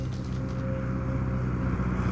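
An airplane engine drones steadily as a company plane lands, a loud, continuous low rumble with a sustained humming tone running through it and no voices.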